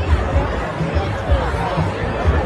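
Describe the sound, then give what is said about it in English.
A dense wash of chatter from a huge crowd, everyone talking while someone films them, many overlapping voices blending into a steady, loud murmur with no single speaker standing out, punctuated by low thumps. “It's because there's a huge crowd here.”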